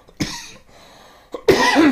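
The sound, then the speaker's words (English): Someone coughs a few times after saliva went down the wrong pipe: a sharp cough, a pause, then a quick hack leading into a louder, raspy, drawn-out cough. “No, I like some saliva went down the wrong pipe.”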